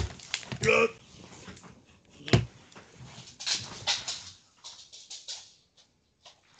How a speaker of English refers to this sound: All right, I guess I gotta let the dog out.